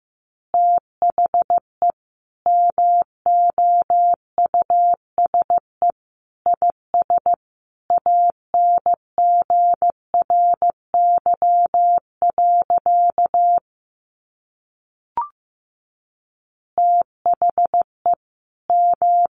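Morse code sent at 15 words per minute: a steady mid-pitched tone keyed into quick dots and longer dashes in clipped groups, with a brief gap and a faint click before the beeping resumes.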